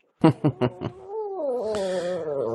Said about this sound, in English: Oh, sorry about that. If you hear some whimpering, this puppy dog came walking by. You can't see, but that's that sound that you heard.